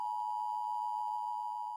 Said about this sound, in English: Beep. This is just a test of the fact that we're going to go listen to a sponsor now.